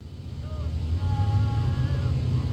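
Steady low rumble of passing car traffic, loud and continuous, with a few faint higher tones drifting over it, outdoors.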